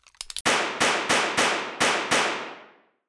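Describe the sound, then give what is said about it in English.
Several faint clicks, then six loud, sharp pistol shots as Percy empties the entire clip into the sleeping Wild Bill Wharton in his cell. The shots are fired in quick, evenly spaced succession, each cracking hard and trailing off in a brief ringing decay before the next. “Percy stood there for a moment longer, then quickly drew his pistol and emptied the entire clip into the sleeping man.”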